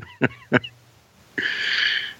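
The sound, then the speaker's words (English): Two quick, nasal snorts in a row, then a longer raspy, wheezing snore-like rush of breath, made by a person's voice with no talking. “Why did you snore when you saw Debra?”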